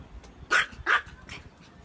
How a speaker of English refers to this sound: That's our Yorkie. My youngest son just let her outside to bark, because that's what she likes to do, is bark.